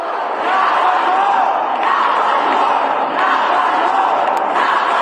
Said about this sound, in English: specifically to support the crowd who had gathered outside, and the crowd was calling for gun reform. And I think that they felt that moving on with the regular House calendar was being disrespectful or ignoring the cries and the calls of the crowd.